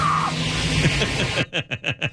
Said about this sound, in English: Getting dragged forward by the car.